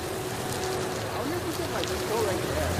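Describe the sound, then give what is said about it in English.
Heavy rain pours down in a steady, dense hiss that fills the whole scene without a break, heard from underneath a bridge, with faint voices murmuring indistinctly beneath the downpour. “So we're pretty much trapped underneath this bridge until further notice. Goddamn rain.”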